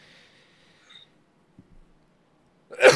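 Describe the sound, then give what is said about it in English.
A sudden loud, sharp sneeze bursts out at the very end after near silence, preceded only by a faint hiss and a couple of soft clicks. “oh, sorry. I had to sneeze so bad, but you know, entropy is real and in more ways than one.”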